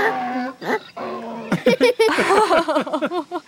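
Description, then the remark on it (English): A donkey brays in a run of loud, harmonic honks that swoop up and down in pitch, starting with a few drawn-out calls and breaking into quicker, choppy bursts. “All we need to do in the morning is load up the donkey and we'll be on our way.”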